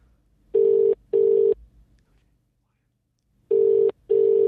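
A telephone rings with a double-burst pattern, two short rings, a pause, then two more. The tone is steady and fairly loud, with no voices.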